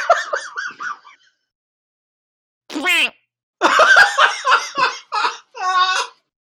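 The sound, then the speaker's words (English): Someone imitates a duck sneezing: a burst of quacky, nasal squawks, a short gasping rise, then a loud run of choppy honking sneezes. No words are spoken. “I will cry at a duck sneezing. Yeah, how does a duck? What sound does that make?”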